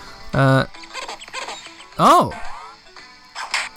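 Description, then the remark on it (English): A video game windscreen wiper effect as car windscreen wipers hanging in front of a fruit and vegetable shop are clicked and perform a wiping animation: a few high, squeaky rubbery swipes, one sustained whine early and a swooping squeal midway. The swipes are fairly loud, separated by softer chirps. “Okay, they're not coat hangers, they're windscreen wipers, car windscreen wipers. And when I click on them, they either perform a windscreen wiping animation or they have a sword fight.”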